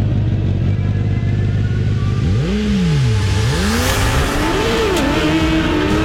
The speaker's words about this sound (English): Wow. 100 mile an hour lawnmower. And some people might ask, well, what does a 100 mile an hour lawnmower sound like? Well, I'm glad you asked.